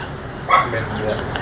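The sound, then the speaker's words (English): A sharp, excited bark rings out, followed by a couple of softer yips, set against a steady background murmur of people. “Some of our pup play people just got very excited.”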